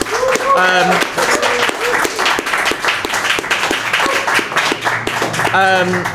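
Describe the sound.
An audience breaks into a loud, steady round of applause that fills the whole stretch, dense clapping with a few voices calling out over it at the start and end.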